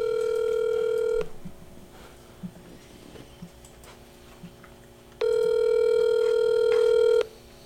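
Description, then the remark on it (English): A phone's ringback tone sounds twice as a call is placed, each a steady, buzzy tone lasting about two seconds, separated by a few seconds of quiet. It is fairly loud, with no one talking. “So, let's call her.”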